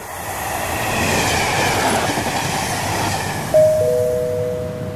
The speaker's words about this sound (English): The train now arriving at platform 3 is the 14:30 calling at Woodbridge. Melton. Wickham Market. Saxe Mundham. Darsham. Halesworth. Brampton. Ulton Broad South.